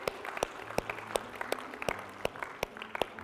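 audience hand clapping

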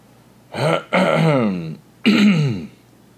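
throat clearing

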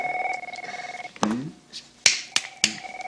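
telephone ringing

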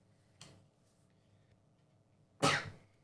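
sneeze

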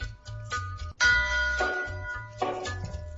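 bells ringing

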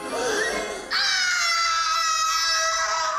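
boy screaming

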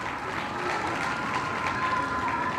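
crowd cheering and applauding

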